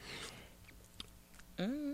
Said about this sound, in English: And again, this is our … wine. So I'm going to take my sip.